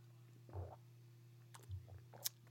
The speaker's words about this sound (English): Let me get a sip of water.